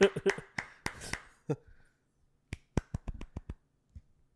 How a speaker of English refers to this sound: This is me clapping and nothing else.